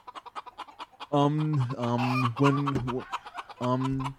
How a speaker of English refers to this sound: Getting them chickens.